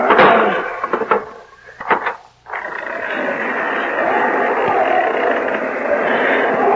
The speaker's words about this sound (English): Hold it while I open this door.